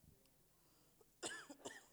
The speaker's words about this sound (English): I said, I feel so much better, and then the cough comes. So pause with me real quick.